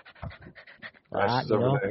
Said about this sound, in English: Oh, it's Dash. Dash is barking.